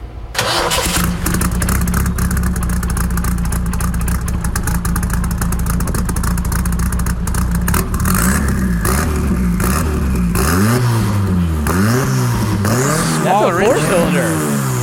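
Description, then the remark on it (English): A four-cylinder car engine idles steadily, then revs hard in repeated rising and falling sweeps, its pitch bouncing rapidly at the top as it hits the rev limiter, loud throughout. “That's a four-cylinder. Is that turbo in there?”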